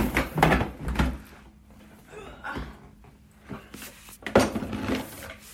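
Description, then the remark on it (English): Bathroom drawers being pulled open and pushed shut, a series of loud wooden clunks and scrapes, bunched at the start and again near the end, with no one talking. “I really wanted to organize the drawers in my bathroom because just looking at them was making me want to die a little bit, so I figured that would be a good use of my time when I don't have much else going on.”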